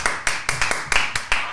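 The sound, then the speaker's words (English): Several sharp hand claps in a steady, slightly uneven rhythm, about seven in under two seconds, fairly loud with a short decay and no talking, done live in a studio as an in-studio sound effect. “I thought our live in-studio sound effects of clapping I actually preferred probably it.”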